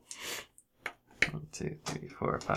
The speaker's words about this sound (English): And I have to roll... 8d6.